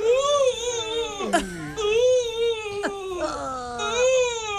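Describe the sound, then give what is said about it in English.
A voice imitating the winded, breathless gasp of someone who fell about 15 feet onto a wooden gym floor and knocked the wind out of themselves: strained, high-pitched whimpering wheezes with sharp downward slides, nearly continuous over several seconds and sounding almost like crying. “That feeling when you knock the wind right out of yourself.”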